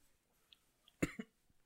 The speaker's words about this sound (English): I was waiting for that cough. That's how I know it's hot.